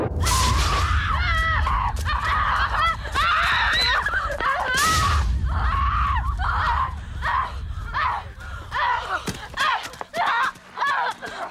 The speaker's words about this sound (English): Cut to two teenage girls screaming. Yeah, no, this is unpleasant. Kate Winslet and Melanie Lynskey are covered head to toe in blood, running through a forest.